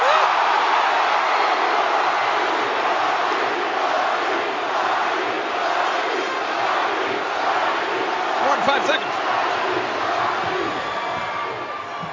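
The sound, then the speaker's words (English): A large crowd chants The Rock's name, a loud, steady roar of many voices blending into one dense wash of sound that holds without a break for the whole stretch. “5 seconds of the people chanting The Rock's name.”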